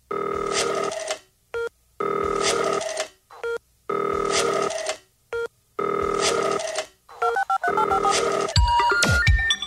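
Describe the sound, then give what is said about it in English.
A telephone rings on a phone-in line in repeated bursts, four or five loud electronic rings with short gaps between them, followed by a quick series of beeping tones at the end. “So thank you, as ever, for being here, and let's open up the phone lines to Arsenal fans from all over the world.”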